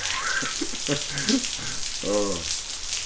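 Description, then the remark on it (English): Heavy monsoon rain, just started, pours steadily outside a garage with its door slightly open, a dense, continuous hiss filling the whole clip, with brief muffled voices murmuring underneath. “Alright, well, the monsoon is here, as you can hear outside.”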